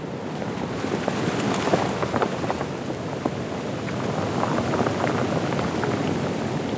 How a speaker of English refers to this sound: The creek becomes the ocean. The mist rises off the waves into the light as they crash. The tide is high right now, and most of the beach is covered with these smooth rocks that kind of click against each other when the water passes through them.